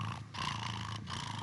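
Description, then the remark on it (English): A voice mimics a cat purring: a steady, low, rumbling drone broken by two brief pauses like breaths, fairly loud and alone without other talk. “Only recently have they worked out what makes a cat purr.”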